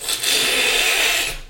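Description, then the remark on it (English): A loud, continuous slurping hiss as apple juice is sucked hard from a juice box, like through a straw, holds steady for about a second and a half before tapering off. No voices are heard. “So, is there a reason you're slurping your apple juice so loud? You want to have an apple juice drinking contest?”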